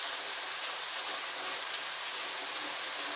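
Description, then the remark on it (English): Steady rain falls continuously, a dense hiss of drops pattering on a surface with occasional slightly sharper taps, even in loudness throughout and with no voices. “I do like the rainy season to a certain degree because it's very therapeutic.”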